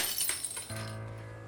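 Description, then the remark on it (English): Picture frames of glass, plastic and wood are thrown to a floor and shatter, a bright crashing burst followed by a brief scatter of tinkling shards and a low resonant hum as it settles. “One by one, I pick up the pictures, and one by one, I throw them to the ground, glass and plastic and wood breaking as they hit at the corner or straight on the face of the protective cover.”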